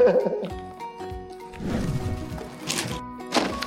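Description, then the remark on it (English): Steak sauce is poured onto a hot sizzling steak platter, setting off a loud, crackling sizzle with wet spattering bursts that swell over a few seconds, after a brief murmur of voice at the start. “And when you pour the steak sauce or the oil from the butter, mm-hmm. yeah, splash.”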